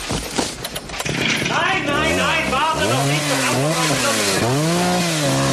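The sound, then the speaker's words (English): In a scene from the film Die Hard, a chainsaw revs up and down in repeated surges as Carl cuts through wires, its engine pitch rising and falling, after a brief burst of rough, scraping noise at the start. “And why does he need to cut a wire before Carl chainsaws them?”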